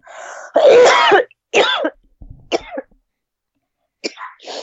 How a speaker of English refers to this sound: … fucking up our broadcast by coughing his shit.